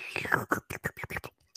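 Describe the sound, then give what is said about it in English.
A voice imitates the first sip from a soda fountain drink machine at a Subway restaurant, making a quick run of about eight breathy, whispery slurping bursts in an uneven rhythm, with no clear words. “Here's some sound effects for you, Eric. You ready? First sip from the drink machine.”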